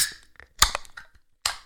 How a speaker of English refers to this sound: Oh, I'm really bad at opening a can. These are really funky.